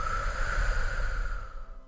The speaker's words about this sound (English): And if you have a moment, let's take a few deep breaths. Think about and reflect about this meditation. Take deep breaths.